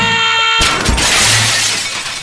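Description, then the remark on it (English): A loud crash of glass shattering bursts in after a steady electronic tone, followed by a sustained spray of tinkling shards and debris over about two seconds. “While there is no cure for Halloween candy addiction, we can help your child manage this serious illness at the Halloween Candy Detox Center, where we really wish we had fewer things made of glass.”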